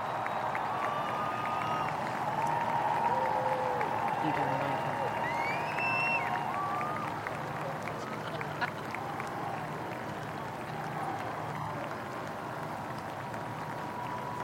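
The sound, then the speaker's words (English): A large crowd cheers and applauds as the Queen comes out, in a steady, dense roar that holds for the whole stretch, with a few high whistles rising over the noise early on and shouting voices mixed in. “That was a scene, and then of course the crowd had burst into God Save the Queen”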